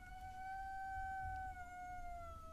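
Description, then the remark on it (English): A cat named Morty lets out a long, drawn-out yowl at another cat, Lil G, a steady wailing tone that slides slightly lower as it holds for a couple of seconds, heard fairly faintly with no talking. “So both of our cats have joined us. They don't really get along.”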